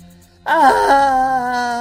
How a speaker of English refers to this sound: Ah! That scream is the last anyone ever hears of Vernon Gloot.